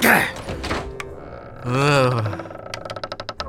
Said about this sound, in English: Why is this door always jammed up?